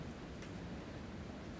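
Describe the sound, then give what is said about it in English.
Steady rain falling, a soft, even hiss that holds constant throughout without any distinct drops standing out. It sounds fairly quiet, with no voices present. “boy, that rain is nice.”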